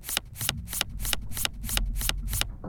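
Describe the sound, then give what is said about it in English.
A deck of playing cards being shuffled for a game of Texas Hold'em, a quick run of crisp riffling bursts at a steady rhythm, about eight in under three seconds, with no voices. “Deck of cards. Shuffled.”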